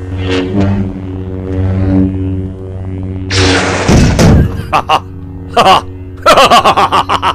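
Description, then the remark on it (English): A steady buzzing hum gives way to a loud, harsh burst of a sword slicing through a metal chair, followed by several short, choppy vocal bursts like laughter or exclamations. “This sword, it sliced it in two.”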